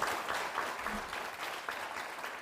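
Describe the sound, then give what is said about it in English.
Steady applause from a group, a dense crackle of many hands clapping at an even level throughout, with no voices standing out. “Please clap.”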